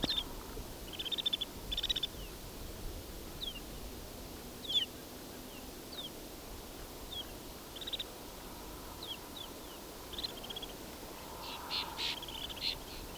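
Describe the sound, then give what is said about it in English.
A flock of 43 snow buntings perched on a wire calls back and forth in short, high chirps and whistles. The calls are scattered intermittently and sound like only a few voices, over a steady low background hiss. “As you can hear, they're somewhat conversational. But I doubt you would think this is 43 birds if you're listening to this.”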